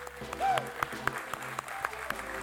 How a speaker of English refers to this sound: If nobody's told you already, happy Mother's Day. Let's give all of our moms another big hand clap.